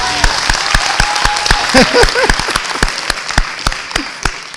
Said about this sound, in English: You've been married for 39 years? No, we've been together 39 years. 39 years. Give them a clap for that.